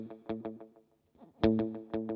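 Electric guitar played through a multi-head tape echo, each plucked note smeared into a cluster of uneven, slightly out-of-step repeats. A short pause, then a louder phrase with the same trailing echoes.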